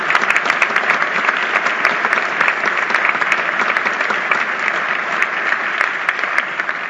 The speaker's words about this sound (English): Typically, we say to refrain from applauding, but this club, we like to clap. Clap as much as possible when everybody gets up.